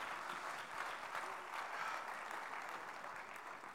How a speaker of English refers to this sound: Come on, clap your hands unto the Lord today. Jesus, help us.